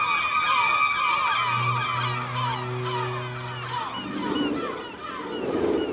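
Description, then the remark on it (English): Hundreds, maybe thousands, of seagulls squawk nonstop, overlapping cries filling the air, while a low steady drone hums for a few seconds and waves rush in near the end. “I heard the sudden squawking of seagulls. Not one or two. It was hundreds, maybe even thousands.”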